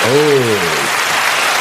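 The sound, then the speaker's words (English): Hands clap in a steady, dense patter that continues throughout, opening beneath a brief voiced cheer that trails off, leaving the rapid clapping alone. “Let's clap for that.”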